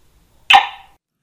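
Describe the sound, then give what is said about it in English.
Abby, a cattle dog in central Missouri, USA, gives one sharp, loud bark that cuts in suddenly and trails off quickly, with nothing else around it and no one talking. “Abby, my cattle dog and unbridled co-host.”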